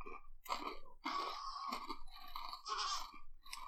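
Loud crunching of hard fried snack rings, harder than Funyuns, a steady run of dry, brittle bites and chews with no talking.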